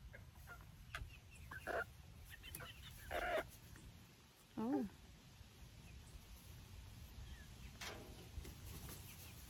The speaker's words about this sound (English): We can show this video of our seven chickens. They're Bard Rock chickens in their new home. These are our new chickens.